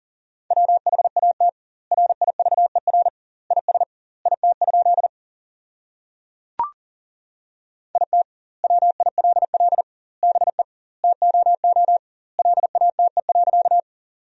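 Fast Morse code at 40 words per minute, sending sentences built from the top 300 words with double word spacing: a steady high tone keyed in rapid dots and dashes, forming short bursts with wide gaps between words, broken once by a single sharp click.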